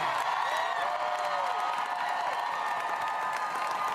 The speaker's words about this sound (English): Obviously, that got a roar from a crowd of teachers.